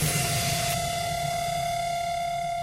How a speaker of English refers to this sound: It goes into this bridge right here that airs out with some wind effects, sound effects.